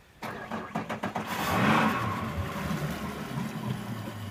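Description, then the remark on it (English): The outboard motor of a tiny fishing boat sputters through a few quick pulls, then catches and settles into a steady droning hum, with no voices, just before dawn in a small inlet hidden by thick mangroves in Ciudad del Carmen, Mexico. “It's just before dawn, and I'm stepping into a tiny fishing boat in Ciudad del Carmen, Mexico.”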